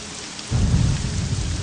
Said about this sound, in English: So among the stormy clouds and the rain here in Morrowind